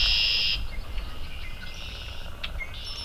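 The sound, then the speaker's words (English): Birds sing outdoors right after a morning of rain, in a steady stream of high, thin trills and chirps, with one brighter sustained note at the start and scattered short calls after, over faint low background noise. “These birds have had today, so they're out singing for that.”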